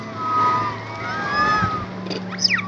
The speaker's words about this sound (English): It sounds like a flock of birds, maybe the squeaks of dolphins, but it's actually the sound of primates, rhesus macaque monkeys. And these monkeys aren't native to this island. Just like the researchers, they arrived by boat.